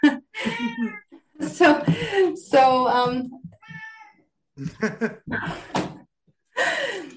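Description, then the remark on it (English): A cat meows repeatedly and loudly, a string of drawn-out, wavering cries with brief pauses between them, including one softer, thinner call midway. “Sorry, my cat just joined.”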